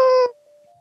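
A single short hawk screech: a shrill, steady, strongly harmonic cry lasting about a third of a second, cutting off abruptly and leaving a faint thin tone trailing behind.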